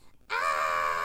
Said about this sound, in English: And then you just like yelled in the teapot, ah, and I was like, oh, okay. Yeah, you can make the noise.